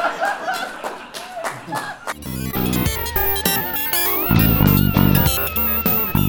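A crowd claps and laughs for about two seconds, then loud music with a steady beat and bright melody cuts in and carries on over the fading applause.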